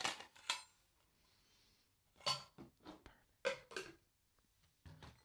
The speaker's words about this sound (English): We'll put some ice in our mixing cup.